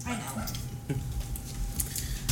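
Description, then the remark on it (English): Dogs bark in short, irregular bursts over a steady background rumble, several yaps overlapping with no clear rhythm. “I think it's the other dogs.”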